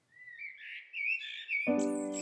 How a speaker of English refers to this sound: Blackbird sings his summer song.